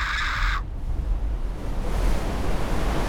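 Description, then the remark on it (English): A woman's brief shrill scream cuts off abruptly and a loud rush of crashing water takes over as a 2-foot wall of water strikes with surprising force out of the darkness, a steady roaring wash that fills the rest of the moment. “A 2-foot wall of water appeared out of the blackness and struck with surprising force.”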